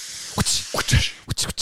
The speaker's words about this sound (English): We turn the steam on? Oh, I can steam too.